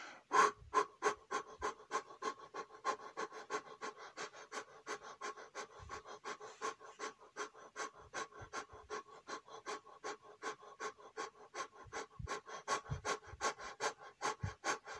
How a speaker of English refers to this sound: So we're going to begin with some very quick in and out breaths, followed by slightly slower breaths, and then we'll ease into the meditation. So let's begin with those quick breaths. Breathing out just at that pace, quickly in and quickly out.